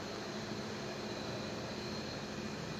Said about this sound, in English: I'm sorry, don't mind the cars. I'm outside.